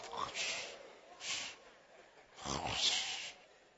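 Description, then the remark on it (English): A person imitates snoring, portraying Jesus asleep at the end of a boat on the Sea of Galilee, with a few loud, rasping, breathy snorts in a slow rhythm and no other talk. “And Jesus was asleep at the end of the boat. Asleep. Snoring.”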